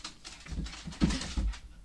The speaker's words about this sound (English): It's a rainy day in Pittsburgh, if you can't tell. The dogs are so hyped up. They're living their best life.